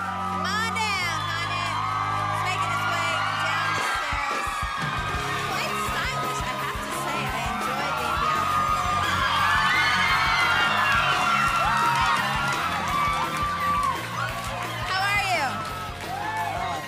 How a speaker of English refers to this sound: Well, wait till the noise dies down. Look at this. So everyone's screaming back there.